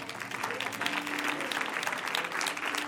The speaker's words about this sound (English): Why don't we give him a hand clap?